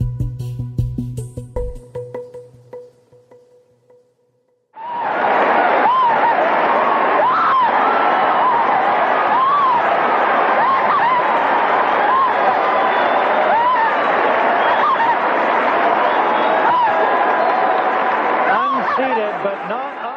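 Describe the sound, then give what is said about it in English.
After a few seconds of talking, a huge crowd roar erupts and holds steady, cheering and applause, with tennis player Venus's repeated high, excited screams rising through the din as she jumps up and down after winning her semifinal match against Spurlea. “That sound you hear is Venus screaming.”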